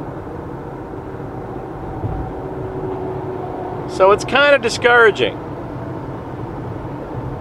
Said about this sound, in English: Meanwhile, the traffic here on Route 80 is fucking nuts. I wish I had the dash cam.